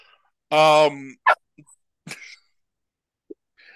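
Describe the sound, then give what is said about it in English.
A puppy lets out one loud, drawn-out bark, then a few short, softer yips and snuffles with quiet gaps between them. “For those who are not watching, there is a puppy. There is, in fact, a puppy.”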